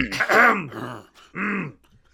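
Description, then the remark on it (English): A voice imitates a man clearing his throat: a gravelly rasp, then a brief pause and a shorter voiced "ahem"-like grunt, fairly loud with no words. “Yeah, like clearing his throat.”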